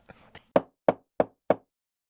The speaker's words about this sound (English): All right, here goes. He knocks on the door.